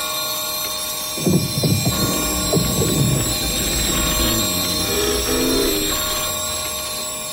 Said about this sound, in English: The clock struck 12 and the room boomed with the sound of chimes.